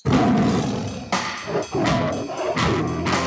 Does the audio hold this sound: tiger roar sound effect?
yes